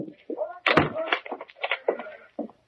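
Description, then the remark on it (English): A door is pushed shut with a sharp bang, followed by a quick series of rattling clicks and clunks as the lock is fastened, with some faint muffled sounds around it. “I'll lock the door.”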